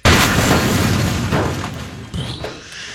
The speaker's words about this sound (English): That's an explosion. Is that what, it sounded like thunder. Was it an explosion? There we go. That's an explosion. All that was just glass breaking or something. Sounds like a car exploding or something.